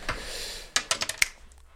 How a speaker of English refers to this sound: Hey, wait. You know what? Go ahead and roll the dice again.